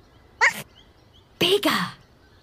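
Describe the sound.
A person imitates a dog barking with two short, breathy vocal barks, the second one louder and longer than the first, with quiet pauses around them.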